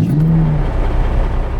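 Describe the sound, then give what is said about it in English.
A recorded car engine sound revs with a steady low rumble and a brief rising whine, played back loudly through a UE Boom portable speaker for a quiet battery-powered Cybertruck, continuous for the whole moment with no talking. “So this is an engine sound being played from a UE boom.”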